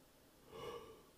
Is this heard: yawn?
yes